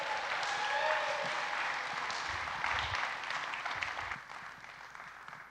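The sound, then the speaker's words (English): A church audience applauds steadily to welcome a speaker, a dense wash of many hands clapping at once that holds for several seconds, then thins and fades toward the end. “Would y'all please give him a round of applause”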